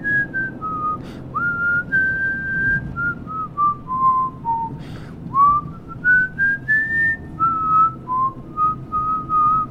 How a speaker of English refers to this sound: The video starts with me whistling, "I love to see the temple."